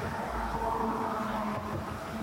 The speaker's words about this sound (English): It's now all of a sudden super busy. There's cars everywhere. There was no cars for a long time, and now there's a bunch of cars.